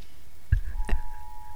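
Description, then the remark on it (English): Two sharp clicks, followed by a steady, high electronic phone alert tone that holds on at a low level until the end. No voices are heard. “So, is that coming from your phone?”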